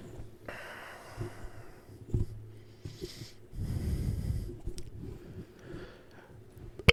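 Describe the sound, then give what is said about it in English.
Heavy, close-miked breathing with rough snorting exhales, including one long, loud rush of air midway. There is no speech, just breath noise right against the microphone. “You're breathing really heavily in.”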